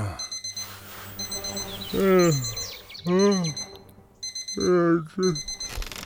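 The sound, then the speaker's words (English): An alarm clock repeats short, high, bird-like chirping beeps in steady bursts, while a voice makes a few drawn-out vocal sounds over it. “get the alarm.”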